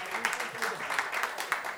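A short burst of audience applause for show guest Barra McNamara, many hands clapping in a dense, steady patter that holds at an even, moderate loudness throughout.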